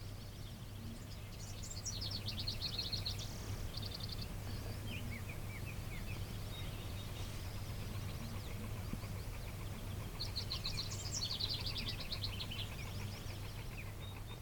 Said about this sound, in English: I'm hearing house wrens. I'm just trying to distract you from the one that I don't know. The nice warbly song is house wren. It's a house wren, okay.